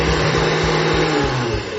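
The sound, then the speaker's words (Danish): A blender motor whirs loudly and steadily for the whole moment as it grinds burnt ash into a fine powder, a dense, even roar with a low humming drone underneath and no voices. “Nu er asken blendet.”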